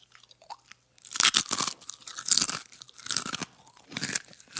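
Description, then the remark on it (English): Loud crunching of a crisp chip being bitten and chewed, several sharp bursts of brittle cracking over a few seconds with brief pauses between, in a game of guessing the chip by its crunch. “I'm going to guess a tortilla chip. Ding, ding, ding, ding.”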